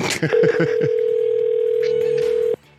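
A telephone call to a Chinese takeaway going unanswered: a single steady, mid-pitched telephone tone drones for about two seconds and then cuts off abruptly, with brief voice-like sounds at the very start.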